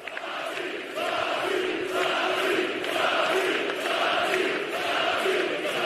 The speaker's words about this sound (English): Did you hear the crowd after the game? Did you hear the love and respect that they have for him and he has for them?